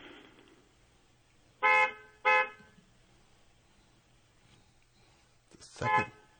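A car horn honks in two short, sharp blasts close together, then a third honk sounds after a pause, loud over a quiet background hum. The car has two horns.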